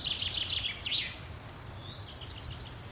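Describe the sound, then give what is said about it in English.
Woodland birdsong in woods along a hollow way, with a burst of rapid high chirps and trills early on, then fainter thin whistled notes, all over a steady low rumble of background noise. “Lots of bird life here.”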